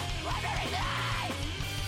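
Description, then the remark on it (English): A strained, shouted emo-style vocal rises and falls over a dense, loud rock backing with heavy bass and distorted guitars, with the screamed line partly buried in the mix, on a less produced, thinner-sounding album track. “That sounds like an emo scream to me, way more than the early rest of the album.”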